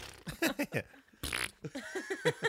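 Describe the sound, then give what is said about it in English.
A voice imitates a fart with a run of short, buzzy lip-flapping bursts, then a breathy hiss and more sputtering blurts. It's fairly loud, with no clear words. “Well, did it fart? But not loud.”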